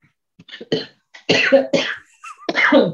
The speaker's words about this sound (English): As I have a coughing fit. I've had that happen while recording before. It's the worst.